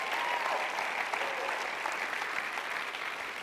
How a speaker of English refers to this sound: Come on, just give them a clap for going out and giving it a go.